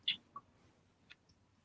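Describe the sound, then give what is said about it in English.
A few soft clicks and brushing bumps right up against the microphone as Dewey the cat rubs his fur across it on a desk, scattered irregularly over a quiet, low background with no talking. “Oh, he's rubbing on the microphone right now.”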